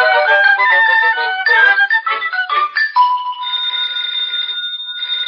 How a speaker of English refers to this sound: Jane, the telephone's ringing.